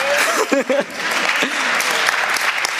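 A crowd breaks into steady, loud applause, dense clapping filling the whole stretch, with a brief vocal sound rising over it at the start.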